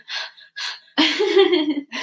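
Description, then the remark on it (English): Loud breathing right into the microphone by a person with a stuffy nose, snorting on purpose: two sharp breathy huffs, then a longer rough nasal snort-like exhale, with another breath starting at the end. No talking. “Did you come here to listen to heavy breathing?”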